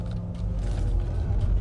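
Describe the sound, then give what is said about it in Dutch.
A car being parked: a steady low mechanical rumble with faint creaking and clicking on top, fairly loud, lasting under two seconds with no talking. “En dan moet ik de auto erin parkeren.”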